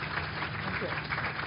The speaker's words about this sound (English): So could we please have a round of applause for our panellists?